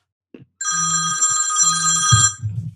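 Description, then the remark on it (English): A telephone rings loudly with an incoming call, a steady electronic trill lasting about two seconds, with a low buzzing pulse repeating underneath before it cuts off. “That's Bill that just called me.”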